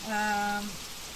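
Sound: heavy rain pouring down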